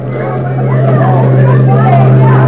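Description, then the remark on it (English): A milling crowd at a ship's arrival murmurs in a steady, indistinct babble of many voices, layered over a constant low mechanical drone, like a ship's engine, throughout. “This unprecedented behavior is what has Rupert forcing his way through the milling crowd.”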